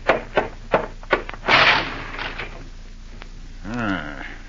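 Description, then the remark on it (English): A car crashes into a lamppost in front of a house: a few sharp knocking thuds lead into a loud, harsh crunch that trails off, then a brief wavering tone sounds near the end. “Car crashed into the lamppost right in front of the house.”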